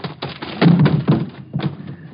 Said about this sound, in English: You knocked him cold. Nice tackle